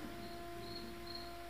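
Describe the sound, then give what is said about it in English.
Crickets chirp in a quiet, steady trill, with pulses of high chirping recurring over a soft background hum and no voices. “They'd be like, cricket, cricket, cricket, cricket.”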